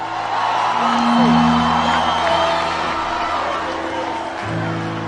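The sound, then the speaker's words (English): A large church audience roars with screams, whoops and cheers, a loud, sustained wall of crowd noise that swells and holds for several seconds. “You can scream louder than that.”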